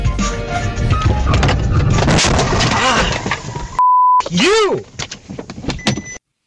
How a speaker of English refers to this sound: So that's a guy, dashboard camera rolling in his car, driving in the Fifth Ward. You can see, actually, in the video, the Allen Bradley clock tower is visible, so he's driving maybe 1st or 2nd Street in through there. And a car runs a red light.